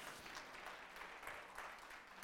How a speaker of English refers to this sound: Ladies, am I telling the truth? Right? Go ahead, you can clap. Go ahead, you can clap.